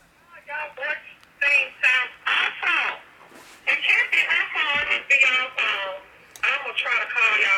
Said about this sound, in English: Oh. It's like a little static. But it's your phone.